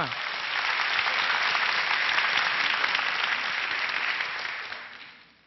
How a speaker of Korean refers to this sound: 오, 굉장한 만족지수 최고입니다. 자, 박수 쳐주십시오.